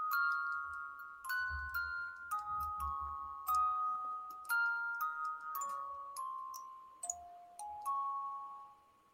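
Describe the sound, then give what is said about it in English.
A small music box plays a slow, tinkling melody of clear, bell-like notes stepping up and down at a moderate, steady pace, with faint clicks underneath and no talking. “He has his own little music box.”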